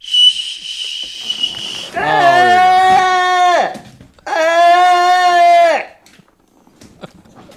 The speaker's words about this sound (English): But is there a theory as to why the whistle? It's to let them know that you need more beer in a busy pub. I need more beer.